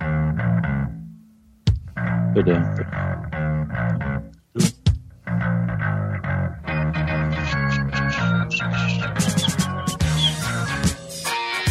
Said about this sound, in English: It literally sounds like instead of using a plectrum, the bass guitarist is using like half a brick on his strings. It's like, could that sound any more a dirtier?